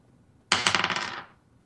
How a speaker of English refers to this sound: Time to roll 1d8 plus 4 piercing damage. Here's my d8.